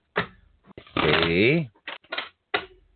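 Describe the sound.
Several short, crisp bursts of tarot cards being shuffled for a reading, with a brief voiced murmur in the middle and quiet gaps between the riffles.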